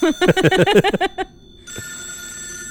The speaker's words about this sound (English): Pick up that goddamn telephone?